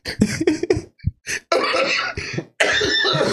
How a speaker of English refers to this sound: Like Yo, the timing on that cough couldn't have been worse. The comedic timing of that cough was fucking Trumpian.